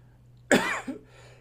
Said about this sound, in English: Sorry for coughing.